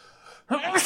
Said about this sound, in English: Oh man, double sneeze right there.